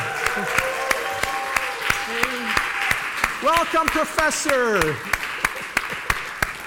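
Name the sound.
audience applause and cheering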